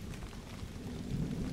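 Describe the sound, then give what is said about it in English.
Steady rain hisses evenly while a deep, continuous rumble of thunder rolls underneath, swelling slightly toward the end. No voices are present. “Yeah, never hide from the thunderstorm in a cave in the mountains, unless the cave is very low and very deep.”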